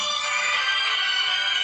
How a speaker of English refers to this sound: Sorry about that. That's okay. Is that the ringtone? Is that your music as your ringtone? I like that. What do you got there? I don't know. That would make me want to answer my phone every time.